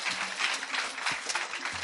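An audience claps steadily for the whole moment, a dense, even wash of many hands with no clear pauses and no one speaking over it.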